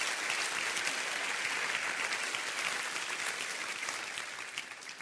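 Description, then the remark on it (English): A large audience claps hands in sustained, dense applause that fills the room, steady and loud before tapering slightly toward the end, with no voices standing out. “Clap your hands real big.”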